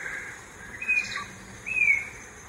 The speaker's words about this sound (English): It's a clear two, sometimes three-note whistle. That's the black-crowned antshrike. Used to be called the western slaty, if you want to be confused.